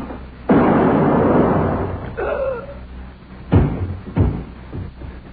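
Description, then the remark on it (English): A loud shot from an old pistol from Rio bursts out and trails off in a long, rough roar, followed by a brief thin whine and then two more sharp, heavy bangs a moment apart. “The old pistol from Rio.”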